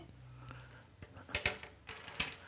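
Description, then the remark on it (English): Light plastic clicks and clattering taps, several in an irregular cluster, fairly quiet, as ink pens are picked up and set down on a pulpit. “All right, so in Proverbs chapter 4, I don't know how come I got all these ink pens up here.”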